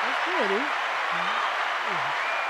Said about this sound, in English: Let's clap it up for that. Let's clap it up for that.